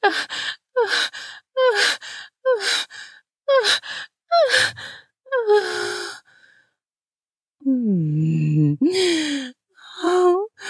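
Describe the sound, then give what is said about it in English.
A voice gasps sharply for air in a quick series of about six breaths, then after a short pause lets out longer, deeper voiced gasps and sighs, loud. “The moans are leaving me breathless, so breathless. I'm gasping deeply for air.”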